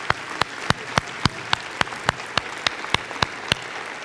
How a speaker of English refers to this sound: Let's stand together and give the Lord a clap offering, shall we? Here we go. That's pretty feeble right there. I didn't much of a hand clap.